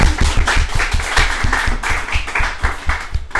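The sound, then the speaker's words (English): At an awards presentation, a crowd applauds the second-place winner in the campaign or project category. Many hands clap steadily in a dense, continuous patter with sharp irregular claps on top, fairly loud and sustained throughout, with no talking. “Feel like we should do a round of applause for second place as well.”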